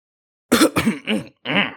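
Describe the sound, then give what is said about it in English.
A man takes a swig of his drink and gives a few short, rough coughs and throat-clearing bursts in quick succession, fairly loud, with a brief pause before the last one. No one speaks. “takes a swig of his drink and coughs a little bit because I'm assuming it's probably rum and very strong.”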